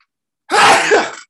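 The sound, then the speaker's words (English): A single loud sneeze bursts out after a moment of silence, a sharp breathy explosion that tails off over about a second, with no talking around it. “Lachayim tir hal gesundheit.”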